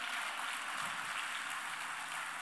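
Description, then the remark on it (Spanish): A church audience applauds for Christ during a morning service: a steady, dense wash of many hands clapping at once, bright and hissy, holding even for a couple of seconds with no voices over it. “¿Por qué no le da un aplauso a Cristo esta mañana?”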